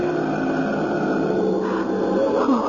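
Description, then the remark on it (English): Heavy, menacing breathing of a man in the dark, with a low, raspy, growl-like texture, heard loud and unbroken for a few seconds with no talking. “First I could hear his breathing.”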